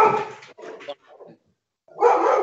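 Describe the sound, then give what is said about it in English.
Dogs bark in short, loud bursts: a long outburst, a few quicker yaps and whimpers, a brief pause, then another strong round of barking. “Oh, some dogs are going.”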